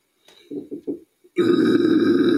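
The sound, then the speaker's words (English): Three short guttural grunts, a brief pause, then a loud, sustained, raspy death metal scream held steadily to the end, rough and harsh with a low growling core. “Let me hear your fucking death metal scream.”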